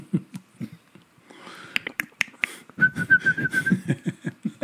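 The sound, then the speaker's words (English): A voice imitates a creature with rapid rhythmic clicks and a thin, steady whistle running through the second half, fairly loud, with no speech. “Some excellent clicking and whistling.”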